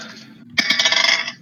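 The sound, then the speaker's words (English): Dice clatter onto a hard table as players roll dexterity saving throws: a soft rattle first, then a sharp strike and a quick run of bright, rapid clicks as they tumble and settle. Fairly loud, with no voices. “Go ahead and make dexterity saving throws just so we have some dice.”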